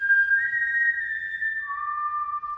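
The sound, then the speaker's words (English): A person whistles two long, steady notes, the first held high and then dropping to a lower pitch, loud with no talking, imitating a signal whistle. “They started whistling.”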